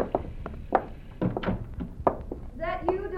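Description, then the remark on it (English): A door is unlocked and opened with a few thunks and taps of the latch and handle, then a creak of the door swinging, moderately loud over a low background rumble. “Maybe it ain't locked. We'll see. It's unlocked. Come on.”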